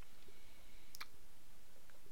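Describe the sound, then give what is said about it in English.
White cheddar Cheez-It crackers crunched right into the microphone, heard as two quick, sharp crackling snaps in the middle of an otherwise quiet stretch with faint background hiss. “Sitting in his in the corner, eating Cheez-Its directly in the microphone.”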